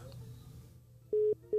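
After a stretch of low background hum, a loud telephone line tone beeps in short, evenly spaced bursts, like the fast busy signal heard when a call drops, as an incoming call-in caller's line is cut off.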